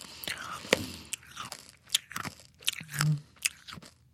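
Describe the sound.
Loud crunching of small hard Tic Tac mints being chewed, with sharp irregular cracks and snaps repeating over a few seconds, plus a brief low hum of a voice midway.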